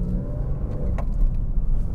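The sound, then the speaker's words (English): A car engine drones steadily as the vehicle drives in traffic past construction, shifting into second gear, a deep continuous rumble with a rising tonal whine that hints at the motor building revs while accelerating. “Okay. Second gear. More construction on the other side of the corner.”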